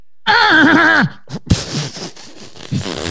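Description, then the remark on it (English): A person imitates a horny goat with one loud, quavering bleat that wobbles in pitch for nearly a second, followed by scuffling noises and a few short vocal sounds. “Is that your horny goat noise?”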